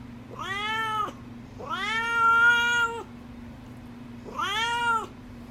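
A cat named Duarte meows three times, each call drawn out and clear with short pauses between, over a steady low background hum and no talking.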